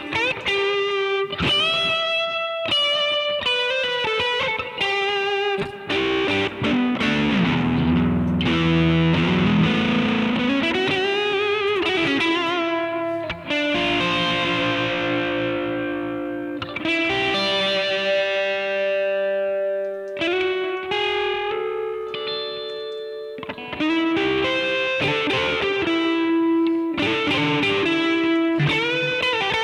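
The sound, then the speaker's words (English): Heavily overdriven bass guitar played through a drive pedal with the gain cranked, producing thick, saturated, fuzzy notes and sustained chords with rich harmonics, loud and continuous with no talking. “It's just a drive pedal. Okay. So this is with the gain maxed on it.”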